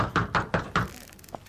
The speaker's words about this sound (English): Knocking at the door. Who's there, eh? Who's there, eh? Knocking, knocking.